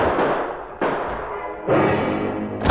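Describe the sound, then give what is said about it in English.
Four loud gunshots at uneven intervals, each a sharp blast trailing into a long, rumbling decay that overlaps the next shot. No voices are heard. “Shots rang out before he reached the door.”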